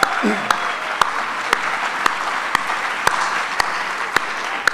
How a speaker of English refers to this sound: So I just want to say thank you so much for being here and being part of our convocation this year. So here's to you. Let's give ourselves a big round of applause for coming back.